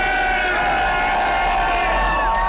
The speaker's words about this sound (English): The team rode through Boston streets on duck boats to celebrate, past throngs of cheering fans.